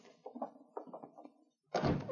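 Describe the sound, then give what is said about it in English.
A front door opens with a few short knocks and rattles, a brief pause, then a louder, fuller thud and rush as it swings wide while two Mounties, Sergeant Preston and a constable, enter with King. “Casting a side glance at the door to the back room, the man moved behind the shout corner near the front door, just as Sergeant Preston and the constable entered with King.”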